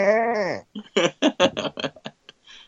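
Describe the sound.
A person lets out a wavering, nasal baa, imitating a sheep's bleat, loud. Several quick, choppy vocal bursts follow, like laughter or fragmented speech.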